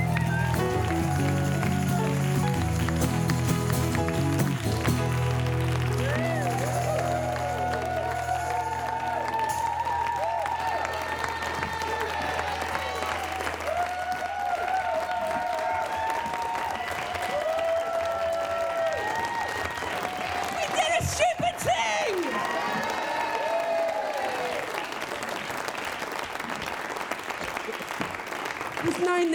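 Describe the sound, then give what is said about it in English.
A crowd applauds steadily for about half a minute at the end of a live show, dense clapping mixed with cheers and whoops, rising voices and shouts breaking through the sustained wash of hands. “That's your cue for applause.”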